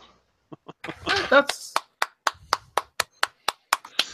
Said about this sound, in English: You're supposed to have sound effects ready. He was clapping. I was clapping. There were real sound effects.